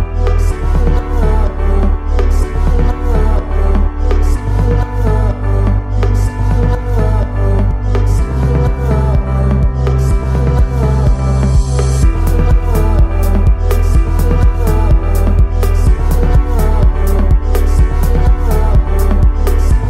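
An electronic dance track plays loud and full, driven by a steady, pulsing beat over deep sustained bass notes that shift every few bars, with layered synth chords and no talking.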